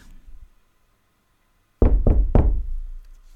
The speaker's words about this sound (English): I am standing at the door, knocking.